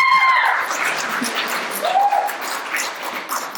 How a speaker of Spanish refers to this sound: Eso es un aplauso.